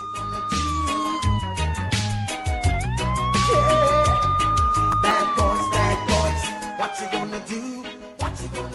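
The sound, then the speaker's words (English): Dramatic, driving music with a heavy beat, overlaid by a loud police siren that wails down and back up in long sweeping tones, then the track cuts off abruptly near the end. “That's that music and the sirens and the gunshots kind of traumatizing”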